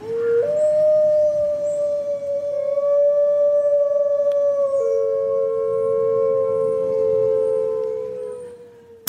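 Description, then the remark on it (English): A gray wolf lets out one long, drawn-out howl, steady and clear, its pitch dipping slightly partway through before it fades out after about nine seconds, with no other sounds around it. “That is a wolf, yes. Gray wolf.”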